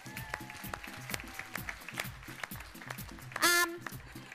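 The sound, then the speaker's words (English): An audience claps steadily to honour a family for their ministry service, many hands making a dense, even patter for several seconds, with a brief shrill whoop rising above the applause near the end. “So can we give them a clap?”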